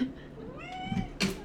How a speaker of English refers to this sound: Let him meow into the mic. Say hi. Okay, close enough. He's just purring.